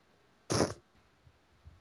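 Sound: cat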